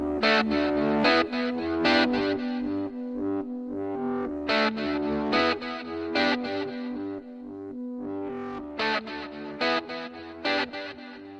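Strummed electric guitar played through an echo effect, with bright chords ringing out in a steady, repeating rhythm at a constant, fairly loud level and no voices.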